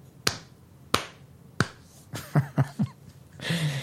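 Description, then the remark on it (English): Three slow, widely spaced sharp claps imitate thin, half-hearted applause for Joe Biden, followed by a few short vocal bursts and a breathy rush of noise. “I mean, I listened to this thing yesterday, and you'd hear, I mean, literally the applause sounded like this.”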